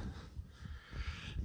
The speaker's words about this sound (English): He's sniffing the mic. Sniff it. Sniff it. Sniff it.